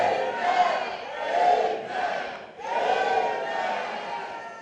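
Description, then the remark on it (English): A large audience shouts "amen" together in three loud, sustained bursts, each voiced roar swelling and fading with short dips between them. “Can somebody give me three powerful amen?”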